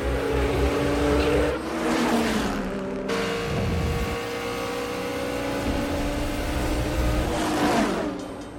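Loud race car engines roar and rev continuously, pitch climbing and dropping as they accelerate, with a couple of sharp surges as the cars race past, from Dom and Brian's race in the film The Fast and the Furious. No one speaks.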